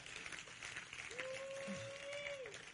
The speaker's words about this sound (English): Oh, clap your hands to the Lord and let's give Him praise.